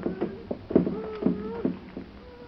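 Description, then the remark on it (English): A string of hollow knocks, roughly seven in quick, irregular succession, fairly loud, with thin creaking tones drifting between the raps and no voices. “I heard it. Like a knocking.”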